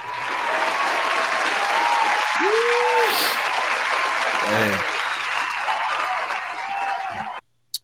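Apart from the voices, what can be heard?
applause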